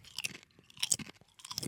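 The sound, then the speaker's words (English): Loud crunching of crisp potato chips being chewed, three bursts of brittle crackling spread over a couple of seconds with brief pauses between bites. “Listen, how crunch. You got to give them points for crunchiness.”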